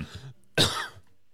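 A single sharp, fairly loud cough, preceded by a soft breathy murmur and followed by quiet.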